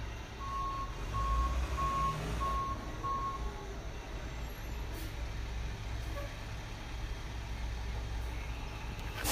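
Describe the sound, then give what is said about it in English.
A series of steady, evenly spaced electronic beeps, like a reversing vehicle's alarm, sounds over a heavy rumbling engine, then stops after a few seconds while the low traffic drone continues. “Now it's beeping.”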